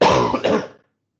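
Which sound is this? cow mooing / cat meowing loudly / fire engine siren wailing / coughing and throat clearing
coughing and throat clearing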